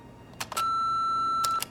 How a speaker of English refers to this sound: Please record your message after the beep, and we'll call you back.